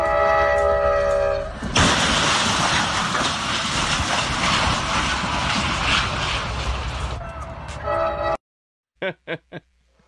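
A train horn blares, then gives way to a long, loud crashing roar of grinding metal and rumbling wreckage. It cuts to silence, followed by three short, sharp bursts.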